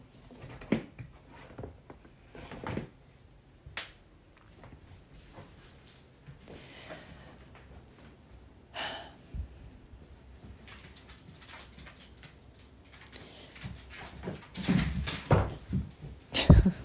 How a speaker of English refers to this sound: Now I have a dog playing with a sock, so I will join her